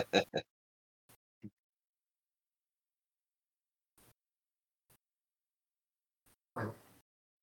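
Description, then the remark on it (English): A dog hacking and retching in short, harsh bursts after chewing toilet paper: a quick double heave at the start, a small one after, then a longer rasping hack near the end, with quiet gaps between. “That's my dog hacking up a lung because he's been chewing up toilet paper and he shouldn't.”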